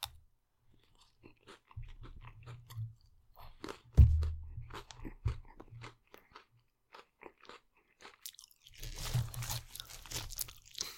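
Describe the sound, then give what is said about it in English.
Close, crisp crunching of someone chewing crunchy food right at the microphone, with irregular bites and grinding bursts, a loud thump-like crunch near the middle, and no talking. “You couldn't have gotten that close to the mic when you had the crunchy.”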